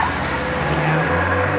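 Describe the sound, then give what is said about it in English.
A car engine rumbles steadily and pulls away as a woman drives off with a man in the car, a dense, continuous roar of motor and road noise with no voices. “She drives off with him in the car.”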